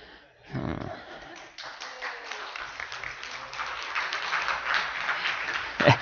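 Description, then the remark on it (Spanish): Applause from a crowd swells after a brief murmur and keeps going as a dense, steady patter of many hands clapping, with a few voices mixed in. “Hermanas, ahí tienen que un aplauso.”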